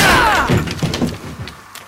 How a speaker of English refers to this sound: on the count of three, we will kick this door in. One, two, three.